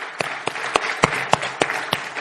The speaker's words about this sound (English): So I want to celebrate their lives. And I want you to clap your hands for the glory of God for this amazing couple,